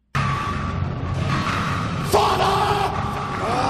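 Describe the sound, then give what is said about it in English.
Loud, dense music with a raw vocal yelled in English bellowing over it, the voice strained and sustained; the sound surges slightly brighter partway through and keeps going without pause. “we do get some music to listen to. This has some English yelling in it”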